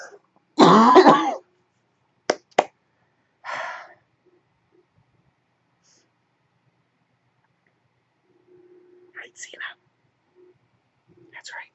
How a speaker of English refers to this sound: Oh, good God. I am so sorry for the way I sound. Okay. I see that. Hold on, coughing attack.